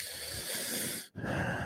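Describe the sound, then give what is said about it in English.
Loud, airy breathing right against the microphone: one long breath, a brief pause, then another rushing breath, with no talking. “Please stop breathing in my ear.”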